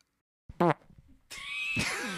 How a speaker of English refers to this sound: I'm just zinging these turd farts. Crop dusted my room.